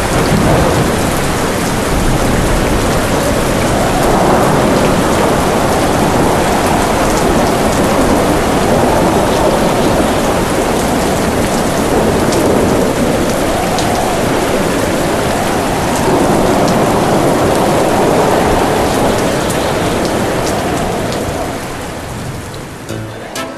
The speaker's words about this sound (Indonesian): Hujan lebat, petir menyambar.